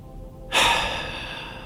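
After a brief quiet moment, a person seated in a chair with eyes closed takes a single deep, slow breath during a guided breathing exercise; it rushes in strong at first and then gradually eases off as it continues.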